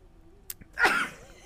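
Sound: sneeze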